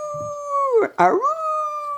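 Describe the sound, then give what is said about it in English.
A person's voice imitates coyotes howling: two sustained, wavering howls with a brief break between them, sung fairly loud with nothing else around. “And all of a sudden, they started hearing the coyotes. Aroo!”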